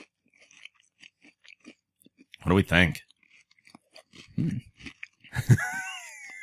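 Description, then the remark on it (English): Crisp crunching and chewing of peanut butter cookies, with irregular bursts of bites scattered throughout, while people talk intermittently and briefly hum or murmur between mouthfuls. “A lot of crunching going on.”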